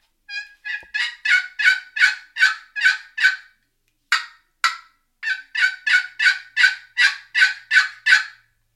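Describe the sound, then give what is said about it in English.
A wooden box call, played softly for turkey hunting, yelps like a turkey in a steady run of raspy, evenly spaced notes, pausing briefly after a few strokes before another series, with no talking. “But let's just say I ripped it and a bird gobbled and he really likes the sound of this box call. I'll tone it down and this is about as far as I'll ever tone it down.”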